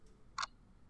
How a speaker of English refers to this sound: You guys find this clock, you hear the ticking sound, and you notice it's very fine.